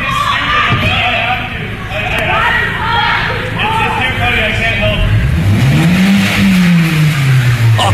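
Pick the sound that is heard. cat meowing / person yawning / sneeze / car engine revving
car engine revving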